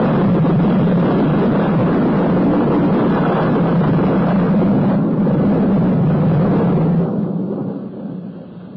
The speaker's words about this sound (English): Oh, never in all the world is the sky so angry. Lightning like day. The thunder's coming. The loudest of all.